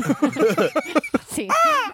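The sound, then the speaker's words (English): Talk runs for over a second, then a single loud, drawn-out cawing call rings out, rising and falling like a large crow-type bird. “What is that? Is it calling for backup?”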